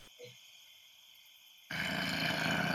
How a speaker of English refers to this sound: Growls.